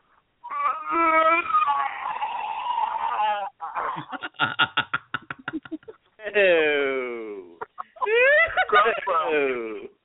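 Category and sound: vocal imitation, voice imitating vomiting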